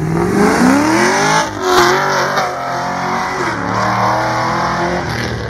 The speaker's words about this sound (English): Okay. So here's pass number 1 on the Camaro.